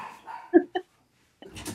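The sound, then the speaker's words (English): The speaker's own dogs bark in a few quick, sharp bursts, with a brief pause before another rougher outburst. No one speaks over them. “Sorry, my dogs are barking.”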